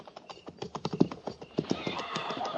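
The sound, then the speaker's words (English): Horses' hooves clip-clop at a steady walk as a mounted troop rides forward in pairs, many overlapping hoofbeats from several animals, with a hiss of ambient noise rising toward the end. “Prepare to mount. Mount. Forward. By twos. At the walk.”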